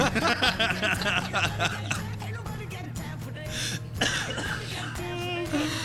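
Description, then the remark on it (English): A prolonged fit of harsh, repeated coughing, fairly loud, with short bursts tumbling one after another, some catching in the throat, with a hint of laughter mixed in. “Oh, he will be coughing the whole time.”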